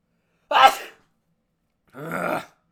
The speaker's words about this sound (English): I gotta sneeze, bro. Hold up.